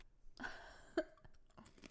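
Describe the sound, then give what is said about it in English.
Someone crunches on crisp, spicy snack chips: a few irregular, brittle crunches with one sharper bite near the middle, fairly quiet and with no talking. “Didn't want to get all the chewing noises on there.”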